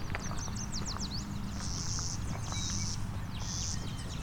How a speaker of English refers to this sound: Doing its buzz, buzz, buzz. Buzz, buzz, buzz, that's clay-colored sparrow.